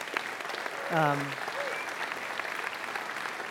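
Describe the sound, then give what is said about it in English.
An audience claps steadily for Mother's Day, a dense, even patter of many hands, with a single voice briefly calling out early on. “You can certainly clap.”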